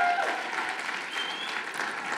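Steady applause from an audience fills the room, a dense wash of many hands clapping at an even level throughout, with a faint tone or whistle briefly audible near the start.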